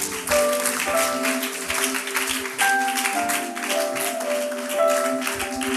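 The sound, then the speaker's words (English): An audience claps their hands together to glorify God in a steady, dense wash of applause lasting several seconds, with sustained keyboard or organ notes ringing underneath. “Let's glorify God with a hand clap.”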